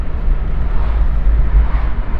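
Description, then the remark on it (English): Steady road noise from a car being driven home: a continuous low rumble with a broad hiss layered over it, holding an even level throughout with no voices. “Hopefully this podcast isn't a little too noisy with the white noise in the background. I'm driving to my place”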